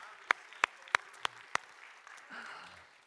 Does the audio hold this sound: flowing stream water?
no